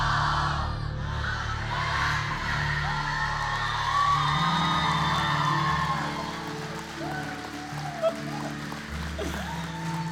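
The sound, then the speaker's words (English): A large crowd cheers and yells loudly on a count of three, with whoops and shouted bellows blending into a dense, sustained roar that stays strong for several seconds before easing slightly. “And I want y'all to give out a cheer. Make this place rumble.”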